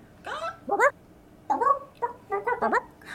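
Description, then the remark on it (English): A voice imitates a chicken, the chicken Hei Hei from the film Moana, giving several loud, squawky clucks in quick uneven bursts with brief pauses between them, with no other sounds. “I just need you to make chicken noises for about an hour.”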